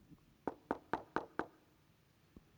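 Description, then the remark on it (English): Five quick, evenly spaced knocks on what sounds like a wooden door, sharp, followed by a pause and one faint final tap. No one speaks. “How long have you been knocking for?”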